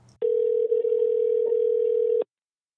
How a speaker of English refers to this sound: Let's just give him a call and we'll hear it from the horse's mouth. Let me dial him up.